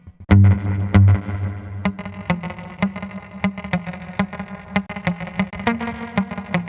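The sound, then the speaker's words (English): A distorted electric guitar riff played through a reverb with its decay turned down, with sharp, clicky attacks, each note followed by a quick slapback echo and a short reverb tail that dies away fast. Steady rhythm, no voices. “It has something close to a drip, but it's not a drip. It's like a slapback echo.”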